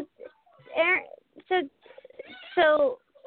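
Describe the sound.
A person imitates a cat's meow, making three drawn-out, wavering mewing calls, separated by short pauses and a few softer vocal noises.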